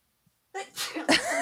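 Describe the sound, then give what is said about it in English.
A big, dramatic sneeze: a short silence, then a voiced, rising build-up breaks into loud, explosive bursts of breath. Nothing else is audible. “A big sneeze.”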